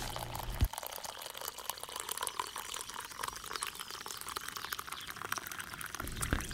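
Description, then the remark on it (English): Hot coffee pours steadily into a cup, a continuous splashing stream with small gurgles and a brief clink near the start, heard alone with no voices. “So pour yourself a hot cup and enjoy the show.”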